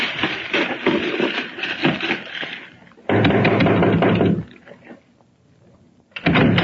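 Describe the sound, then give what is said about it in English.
Knocking on a door, heavy, with clusters of raps separated by short pauses and a final burst near the end; no one speaks. “As if you were waiting for someone to knock at your door.”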